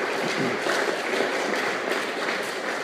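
A crowd gives a big round of applause as a guest speaker is invited up, many hands clapping in a dense, even wash of sound that holds at a constant level for the full few seconds with no voices.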